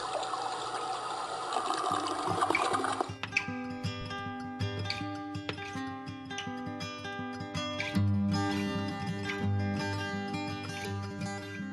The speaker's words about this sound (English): I flushed that sucker goodbye.